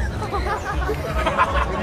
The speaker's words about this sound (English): We're doing some street hypnosis out here at the fair. It's absolutely nuts. We got thousands of people around us. The crowds are starting to gather all over the place.